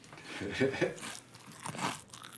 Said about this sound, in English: Why don't you chew some louder?